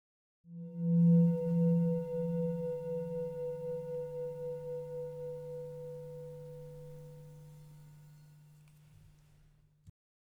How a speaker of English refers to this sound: When you hear the bell, notice the experience of hearing.